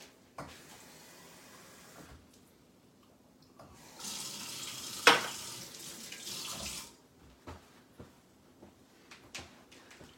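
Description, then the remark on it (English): A kitchen tap in Colorado Springs runs in two broad hissing bursts as someone gets some water, the second louder with a sharp splash as water hits the sink, followed by scattered clinks and knocks of dishes. “I'm gonna get some water.”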